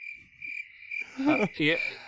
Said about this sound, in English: Insert the cricket sound right there because that's not Ghostbusters.